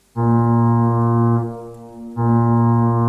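Two loud, deep foghorn blasts with rich harmonic drones, the first about a second long, a brief dip, then a second blast starting strongly; no voices are heard.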